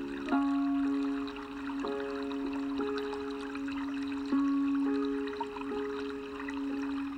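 Gentle water laps against a canoe and trickles, with soft drips falling from a paddle, set against a steady sustained musical drone that holds throughout. No one speaks.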